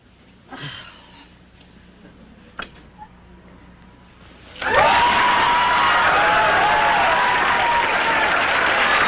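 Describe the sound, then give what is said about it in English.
A sitcom studio audience bursts into loud, sustained applause with cheering and whoops, reacting to a scene of Suzanne Pleshette in bed with Bob Newhart, following a few seconds of quieter murmurs and a sharp click. The clapping holds steady to the end. “Listen to the crowd reaction.”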